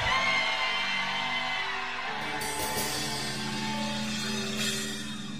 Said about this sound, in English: Shout a loud amen. Shout a crazy shouting of an amen.